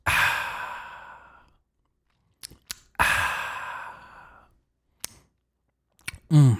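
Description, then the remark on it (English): A quick sip is followed by a long, satisfied breathy exhale that fades out. Small wet sipping clicks come next, then another drawn-out contented sigh and a few more sips. “That little at the end when they take a sip.”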